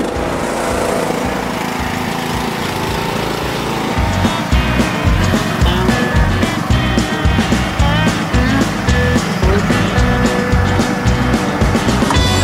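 A lawn mower engine runs loudly and steadily while cutting a lawn, growing stronger partway through with a rough, throbbing chug as it mows. No voices.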